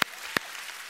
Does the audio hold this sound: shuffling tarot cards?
no